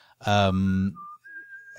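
A person whistles nearby: a short thin note followed by a longer, steady higher pitch, preceded by a brief low voiced sound. Moderately loud, with no talking.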